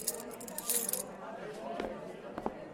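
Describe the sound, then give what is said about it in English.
A bright jingle of keys held in hand in a hallway rattles for about a second, a quick cluster of metallic clinks, then fades into a quieter background with a few soft sounds. “They all stared at me as I stood in the center of the hallway, keys in hand.”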